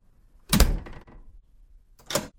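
A big metal front door slams shut during a door slam test with a deep, booming thud and a short rattling decay from a mirror on the wall vibrating, followed a moment later by a second, sharper metallic clack.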